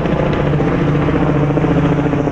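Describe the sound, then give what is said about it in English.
A medevac helicopter drones loudly and steadily overhead, its low rotor thump pulsing in a continuous rhythm with no voices present. “That chopper, by the way, looks like it's a medevac or something along those lines, so hopefully not coming for me.”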